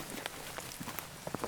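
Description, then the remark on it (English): Light rain patters steadily outdoors in the woods, scattered drops ticking on leaves and ground in a soft, irregular rhythm, with no voices present. “You know, it is raining, just slightly, but it's not at all unpleasant out here.”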